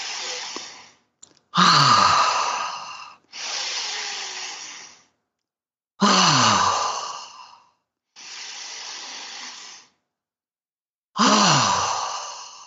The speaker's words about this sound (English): And it's essentially where you breathe into your genitals. You do deep breathing way down into your genitals. And you're just doing this.